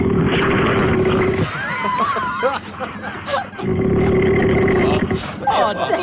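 Loud, rasping snoring of a man sleeping at a house by a river during a sleepover: two long, rumbling inhaled snores, each about a second and a half, separated by a wheezy, whistling exhale, with another whistling breath starting at the end.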